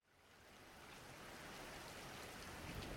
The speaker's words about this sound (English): It's a rainy, windy, stormy night.